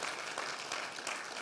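A crowd of people applauding together, a dense, steady wash of many hands clapping at once with no voices over it.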